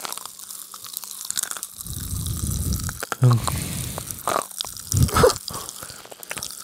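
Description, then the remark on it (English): Loud, irregular crunching and chewing of a whole pack of a crisp snack, with bursts of crackly munching and short bites, some louder jaw crunches standing out, and no speech over it. “I sound like a rain stick.”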